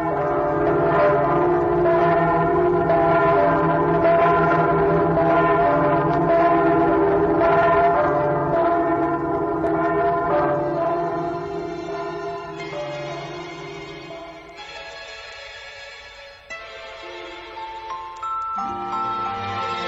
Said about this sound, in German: Festlich und vertraut zugleich klingen die Glocken der Hamburger Michaeliskirche, des weltbekannten Michel.